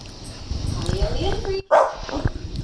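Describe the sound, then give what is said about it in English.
The speaker's own dogs, not the movie being watched, bark in a quick, sharp burst, loud and insistent, with a whiny yip mixed in over some low background talk. “My dog, that's not in the movie.”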